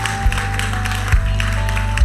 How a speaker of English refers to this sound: Come on, one more time. Let's give Jesus a hand clap of praise and let's worship together.